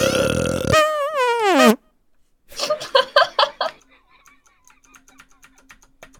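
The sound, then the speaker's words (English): A loud, drawn-out burp rasps for nearly two seconds and ends abruptly. After a short silence come choppy, chuckle-like bursts that fade into quieter sounds. “You hear a loud, long burp and a squeaky farting sound, and then you hear something say with a gurgling voice, "Where's your mother?"”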